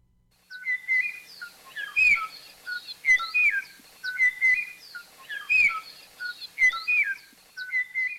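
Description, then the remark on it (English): Song of the last known Kauai O'o, an extinct Hawaiian forest songbird, recorded in the 1980s in the highest forest near the top of Kauai: clear, fluting whistled phrases repeated in a steady rhythm about once a second, distinct over a quiet background, with no voices. “the last known individual was recorded singing its beautiful and haunting”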